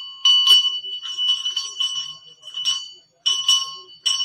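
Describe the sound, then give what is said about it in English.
A bright handbell rings repeatedly in quick bursts of shaking, with short pauses between, with no talking. “You feel good because the bell's ringing.”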